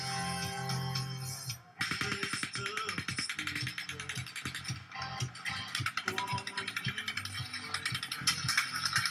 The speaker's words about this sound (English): 30 seconds later, we hear what sounds like automatic gunfire.